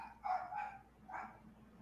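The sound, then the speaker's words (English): Dogs bark in a quick pair of yaps followed by one more a moment later, sounding fairly faint, with no talking over them. “My dogs hate it.”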